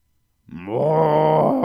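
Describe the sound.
A person imitates a cow with one long, low, drawn-out "moo" that swells in after a brief silence and holds steady and loud to the end.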